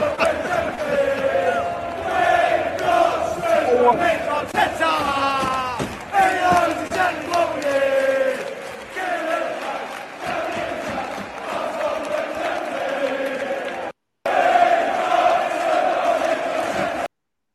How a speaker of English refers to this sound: The majority of the fan base, you know, applauding the players off and, you know, thanking them for such a great effort on Saturday.